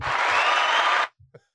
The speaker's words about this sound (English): No. Why the fuck are you cheering?